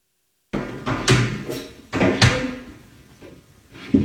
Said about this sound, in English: It's balancing on its tail and it's aggressively banging into this guy's window. Listen to this.